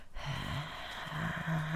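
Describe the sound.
A voice imitates a feeble, small hair dryer with a steady, raspy, wheezing exhale like an old sick man's breathing, humming and rattling at a low pitch, loud for nearly two seconds.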